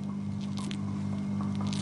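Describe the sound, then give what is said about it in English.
A large female trapdoor spider named Sweetheart crunching a beetle down in her hole: a few brief, soft crackling crunches come in irregular bursts over a steady low hum, with no one speaking. “She's got the beetle. Can you hear her crunching?”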